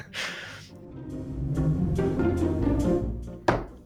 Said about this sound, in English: My hand knocked my phone as I was bringing it up from under the desk where it was sitting. Broke it clean in half.